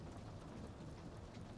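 Steady, dense rain drums against windows with a dull low rumble underneath, like thunder, a continuous wash of storm noise at a fairly quiet level with no voices.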